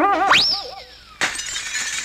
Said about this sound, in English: The arrow went right through a window in your house.